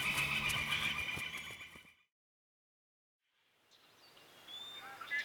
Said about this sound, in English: The horses are right through the trees there.